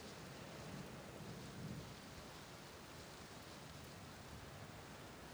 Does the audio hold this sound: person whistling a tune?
no